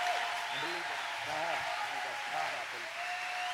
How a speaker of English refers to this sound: Clap your hands, Higher Vision, one more time.